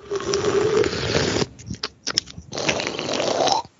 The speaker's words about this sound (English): Slurping into the microphone is pretty rude, I'd say, but. Who the fuck was that? If you do it again, I'm going to leave. Who's slurping? Who is it?